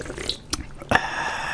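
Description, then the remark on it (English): Water trickles and drips, two sharp splashy plinks followed by a steady, thin pouring stream that keeps running quietly to the end. No one talks. “Whoa, is that water? That's regular water.”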